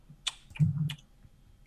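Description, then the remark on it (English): A few sharp, irregular clicks of typing on a computer keyboard, fairly quiet, with a dull low thump among the keystrokes and no voices. “keyboard's all messed up.”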